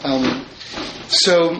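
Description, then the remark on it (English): A bathroom door swings shut with a single short knock partway through, while indistinct voices murmur in the background. “Would actually someone close the bathroom door back there?”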